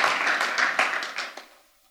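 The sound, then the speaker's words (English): A church audience applauds a speaker, clapping in a dense wash of applause, many hands overlapping into a steady crackle that thins out and fades away within a couple of seconds. “Round of applause for Mark.”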